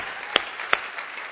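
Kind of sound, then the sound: crowd, audience clapping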